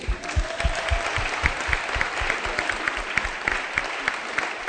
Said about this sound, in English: Clap for Jesus.